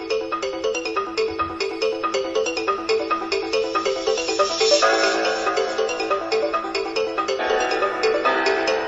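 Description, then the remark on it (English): Video game music, also used as a phone ringtone: a bright, chiming electronic melody plays on its own, with quick repeating plucked notes in a steady, busy rhythm at moderate volume for the whole stretch. “The music for this one is what I have as my ringtone.”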